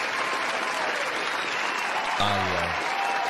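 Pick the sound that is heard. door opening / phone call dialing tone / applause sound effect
applause sound effect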